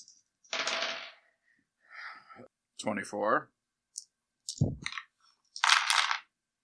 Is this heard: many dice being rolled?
yes